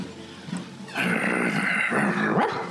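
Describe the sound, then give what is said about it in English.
A person does a loud impression of a dog at cyclists on the pavement, letting out a harsh, sustained bark-like growl that swells in the middle and trails off, with no ordinary speech alongside. “Anyway, I turn into a dog when I see the cyclists.”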